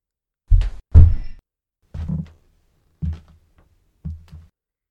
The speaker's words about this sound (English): For a moment, you thought the trapped thing was back. And then you thought the footsteps were down there in the subcellar with you.